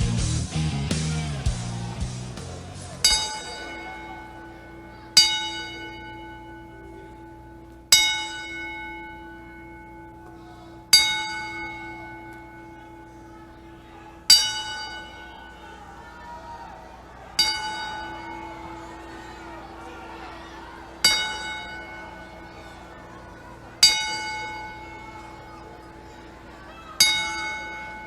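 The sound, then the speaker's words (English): A single bell is tolled slowly ten times at a WWE wrestling event as a tribute to a late wrestler, one strike roughly every three seconds, each clear ring left to fade before the next. A brief burst of crowd noise comes before the first toll. “as we toll the bell 10 times, out of respect to the late Brian Pillman”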